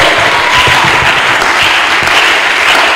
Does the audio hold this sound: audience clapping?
yes